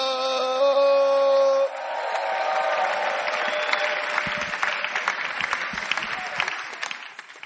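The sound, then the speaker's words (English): An audience at a church service breaks into loud, dense clapping for Jesus that keeps going for several seconds, just after a brief sustained musical chord rings out and stops. “Clap your hands for Jesus.”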